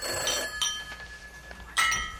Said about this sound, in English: do you hear a telephone ringing? I did a little while ago, but I can't hear anything. Now hold on. Yes, I do. No. It's far. It sounds far away. Real far away. Uh-huh. I think that's my bedroom telephone,